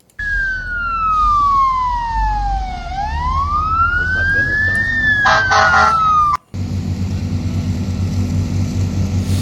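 A loud fire engine siren wails at a house fire on 8th Street in front of Church's Chicken by J&J Muffler Tire, sliding slowly down in pitch and back up over a low engine rumble, then cuts off abruptly into steady rumbling noise.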